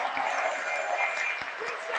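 A church audience claps hands together in a steady, dense wash of applause, loud and continuous throughout, with a few sharper individual claps standing out.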